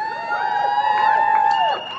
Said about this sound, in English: Sorry. I'm not used to getting applauded.